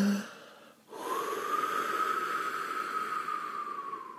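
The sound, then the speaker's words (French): After a brief pause, a wolf blows with all its strength at a pig's house of straw, destroying it: one long, loud, breathy whoosh with a thin whistling tone running through it, holding steady for over three seconds. “Et le loup souffla de toutes ses forces.”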